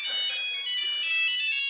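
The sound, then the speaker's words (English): A mobile phone ringtone plays during an announcement to visitors, a bright electronic melody of high tones ringing continuously and fairly loudly for a couple of seconds with no voices. “Visitors are reminded to turn off their mobile phones.”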